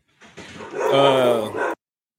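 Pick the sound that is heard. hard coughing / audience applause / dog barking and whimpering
dog barking and whimpering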